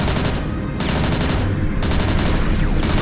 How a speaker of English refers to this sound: The only way to get the creature to follow me was to attack it. So I targeted the guns at it and fired.